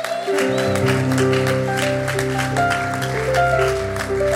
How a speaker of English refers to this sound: So why don't we give her applause as she comes.